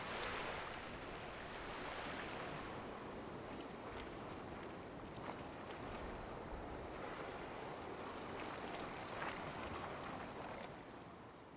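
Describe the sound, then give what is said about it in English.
Ocean waves break and wash steadily onto a beach, a continuous broad roar of surf with gentle swells rising and falling, with some wind buffeting the microphone. “On your way there, to your right, you will see the beach. You can watch the waves, look at the gulls hover overhead, and listen to the sounds around you.”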